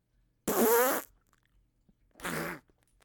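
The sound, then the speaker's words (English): Two blown raspberry-style fart noises made with the mouth: a loud, wobbling one lasting about half a second, then a shorter, slightly softer one after a pause, with no talking. “I can't make fart noises anymore.”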